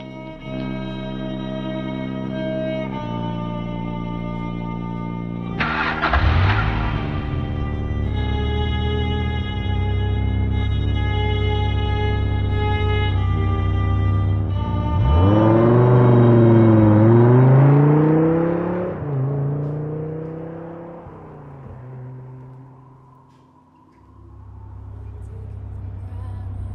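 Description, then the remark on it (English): A 1967 Dodge Charger engine turns over and catches, then revs up and down in rising and falling surges, heard loud over a steady, effects-heavy musical drone. “Nice car. 67 Charger.”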